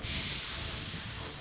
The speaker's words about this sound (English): So the air sizzles.